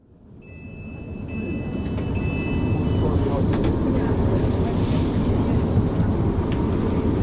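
Railway station ambience just outside Reading Railway Station in November as a train rumbles past, its heavy low roar swelling over the first few seconds and then holding steady, with thin high-pitched whines ringing out early on.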